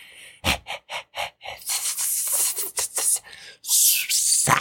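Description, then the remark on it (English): A person hissing like a snake: a few short, rhythmic breathy puffs, then long, sharp, sustained hisses with a brief pause between them, fairly loud and with no talking. “How do you communicate this? I start hissing.”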